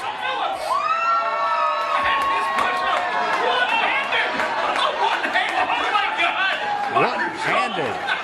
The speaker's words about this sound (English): In front of a delighted crowd last night.